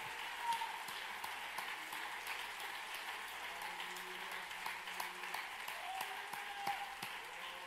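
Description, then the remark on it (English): A church audience claps hands to the Lord, a dense, steady wash of many overlapping claps with no individual rhythm, sustained for several seconds, with a few faint voices and tones poking through. “Could you clap your hands to the Lord one more time?”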